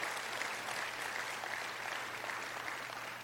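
A crowd applauds steadily, many hands clapping in a dense, even wash of sound that holds at a constant loudness without pause for the whole stretch.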